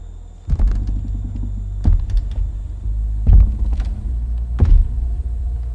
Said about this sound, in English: The heavy creak of this massive man walking slowly down the dock. Like he had all the time in the world.